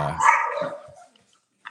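A brown dog with a little black on its back lets out one loud bark that trails off, followed after a short pause by a brief, quieter yip.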